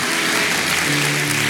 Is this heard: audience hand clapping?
yes